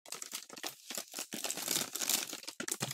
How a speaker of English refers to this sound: What is this horrible noise? It's me opening a bag of chips.